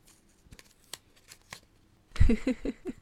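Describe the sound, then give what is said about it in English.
Paper rustling while picking the Cree word of the week: a few soft crinkles and ticks, then a louder burst of tugging, crackling rustles near the end as the stuck paper is pulled, with no one talking. “Hold up. Paper's stuck.”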